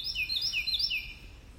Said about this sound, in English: That's an insistent bird, isn't it?